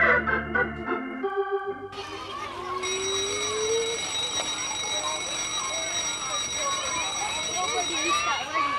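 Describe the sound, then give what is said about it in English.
After a brief musical lead-in, a school dismissal bell rings loudly and continuously for several seconds, a steady metallic clang over a murmur of background voices. “When the dismissal bell rang, Dennis eluded his friends as quickly as he could without arousing their suspicion.”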